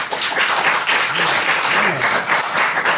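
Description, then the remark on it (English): An audience applauds to vote for 101 Dalmatians in a matchup against King Kong, a dense, even wash of many hands clapping at a fairly loud, constant level with a faint voice or two underneath. “And if you would back 101 Dalmatians, please applaud now.”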